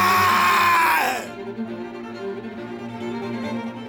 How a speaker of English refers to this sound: A shrill, blood-curdling scream as this garbage man smells just the nastiest stuff as he's opening up the garbage can in front of one of the houses, and he sees a head.